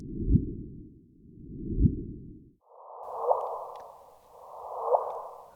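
A gravitational wave chirp, a measured ripple in space-time from a discovery announced by the NSF, rendered as sound and played four times: two low rumbling swells, then two higher-pitched whooshes, each building to a quick rising sweep before cutting off.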